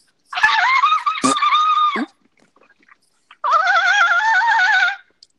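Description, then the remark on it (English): A person imitates a dolphin with two long, high, warbling squeals, each lasting over a second and a half, separated by a short pause, with a sharp click-like burst in the first. “I'm a dolphin.”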